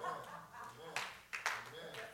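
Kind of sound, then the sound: crowd, a few people clapping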